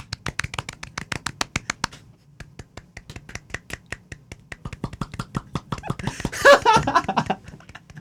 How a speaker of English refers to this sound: I was just clapping. Imagine as the like you can see through there and I'm just clapping.